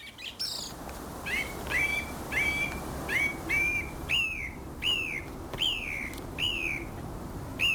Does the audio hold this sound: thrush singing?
yes